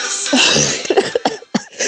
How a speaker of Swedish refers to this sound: Jag får hostan för alla dör här och här, den här informationen.